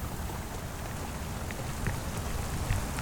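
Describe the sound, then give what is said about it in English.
Heavy rain, just switched from a trickle to a downpour, pours down in a steady, dense hiss, with scattered louder drops pattering on a hard surface. No voices, just the continuous downpour. “And then, just as he was putting a few of the last brush strokes on the wall, the rain switched from a trickle to a downpour.”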